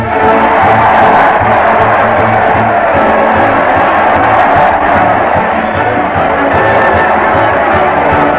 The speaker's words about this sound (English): Listen to that crowd. They're cheering Fred Allen as he leads his weekly parade to the old Town Hall.